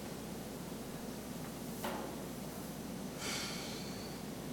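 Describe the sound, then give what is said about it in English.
A deep breath against a steady hiss of background noise: a short, sharp intake followed a moment later by a longer, airy exhale, both fairly soft. “Okay, take a deep breath.”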